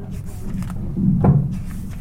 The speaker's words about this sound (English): Right, I just need to do some adjustment to the mic.